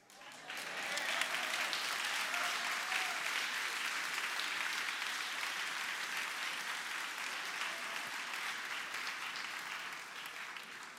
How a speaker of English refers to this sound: The retired folks always get the round of applause. It's like, we're so envious of them.